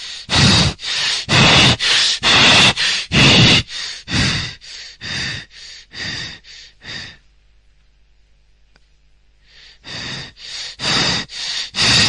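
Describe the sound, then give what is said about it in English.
A person imitates the Cheyne-Stokes breathing of a dying person: a fast run of loud, harsh gasping breaths that stops for a few seconds of silence, then starts again in quick, heavy pants. “Normal breathing, but it stops, goes very high, then it comes and it stops, and then it starts and it goes and builds up.”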